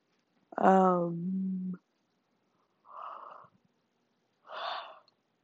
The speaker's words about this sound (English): Need to stop yawning.